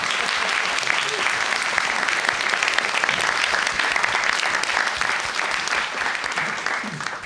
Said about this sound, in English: If we could all give a massive round of applause to our next storyteller